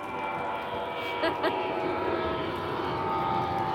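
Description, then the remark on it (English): An airplane drones overhead, a steady, moderately loud rumble with a faint engine whine that holds through the whole moment, with a brief murmur of voices early on. “I was going to say, and not one of your planes.”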